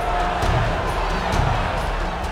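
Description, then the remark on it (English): A large crowd in angry uproar, many voices shouting and screaming together in a dense, steady roar that holds at a constant loudness for the whole stretch. “The Oyo burst into an uproar. They screamed at Shango, their anger rising in fervor like the swell of a storm ready to explode.”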